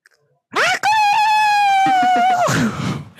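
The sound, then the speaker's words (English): A person imitates a rooster's crow: a short rising yelp followed by one long, loud, sustained high-pitched call that holds steady for nearly two seconds before breaking off, with a brief breathy tail. “The American say cock-a-doodle-doo. Yeah, that was very like, yeah, cock-a-doodle-doo.”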